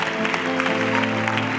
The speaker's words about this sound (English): I know it's intimidating sometimes, but listen, you hear the claps, they're happy. People are excited because you're making that step.